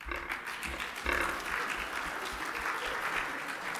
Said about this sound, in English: You don't applaud for me. Come on, man.